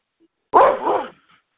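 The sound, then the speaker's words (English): A single loud dog bark, slightly drawn out with a throaty tail, followed by silence. “Oh, barking again.”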